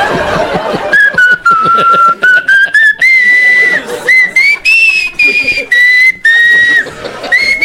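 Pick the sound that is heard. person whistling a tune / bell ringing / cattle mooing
person whistling a tune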